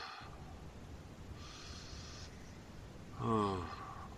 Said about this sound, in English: Breathing. Anybody here? I'm breathing. Breathing.